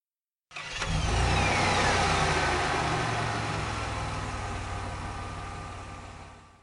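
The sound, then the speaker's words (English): A motor car engine starts up abruptly and rumbles loudly as the vehicle pulls away, its steady droning hum gradually fading. No voices are heard. “They tenderly lifted Toad into the motor car and propped him up with soft cushions and proceeded on their way.”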